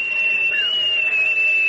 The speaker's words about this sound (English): Now, Squire, Where's the rest of the crew? Stowing their supplies below. I'll whistle them up for you.